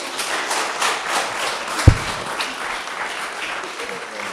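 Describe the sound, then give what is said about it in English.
An audience applauds a family steadily, many hands clapping in a dense, even patter with a single louder thump near the middle, holding at a moderate level throughout. “Let's give this wonderful family a round of applause.”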